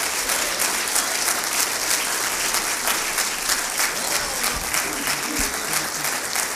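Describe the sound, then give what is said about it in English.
A church audience on its feet claps steadily and loudly for several seconds as a pastor comes up to preach, a dense, continuous wash of applause with scattered voices and cheers mixed in. “can we give the Lord one more hand clap of praise?”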